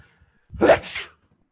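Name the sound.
sneeze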